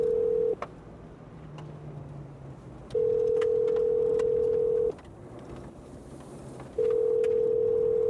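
A phone line ringing on the other end: a steady, mid-pitched electronic tone sounds in about two-second bursts separated by pauses, repeating evenly over a low background hum, with no voices.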